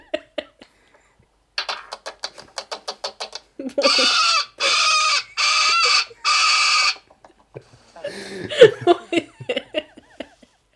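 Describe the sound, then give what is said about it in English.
A parrot outdoors squawks: a quick run of clucking notes, then three long, harsh, loud screeches in a row, ending in scattered chattering calls. “What is it? It's a parrot.”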